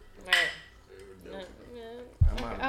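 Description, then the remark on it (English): A quick bright clink of glasses touching in a cheers toast early on, ringing briefly, with people's voices talking through the rest and a dull thump near the end. “All right, we got to cheers if we're gonna tell the Hobo Nation.”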